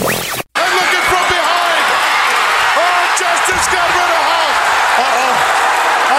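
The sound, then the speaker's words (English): A loud, roaring wrestling arena crowd fills the whole clip, a dense wall of cheering and shouting with individual voices rising and falling, broken only by a brief cutout near the start, behind commentators Gorilla Monsoon and Bobby Heenan calling the moment Sid Justice eliminates Hulk Hogan. “Listen to the crowd in the background.”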